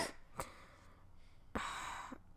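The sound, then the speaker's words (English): Someone coughs twice: a quick sharp burst, then a longer, raspier, breathy cough after a short pause, with no talking around it. “Well, oh, I knew the one coughing now? It's because I made a bad decision.”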